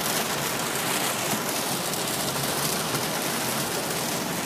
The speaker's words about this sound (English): Wow, this is really raining. I hope you guys can hear what I'm saying, because I'm trying to make a point as the rain decides that